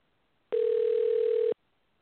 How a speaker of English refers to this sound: Wow, we're getting phone call. We're getting, ladies and gentlemen, I hope somebody picks up the I'm phone.